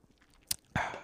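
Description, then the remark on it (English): A brief slurp from a sip of fizzy seltzer: one sharp wet click, then a soft breathy fizz with a low gulp that trails off. No one speaks. “Let's take another sip of seltzer.”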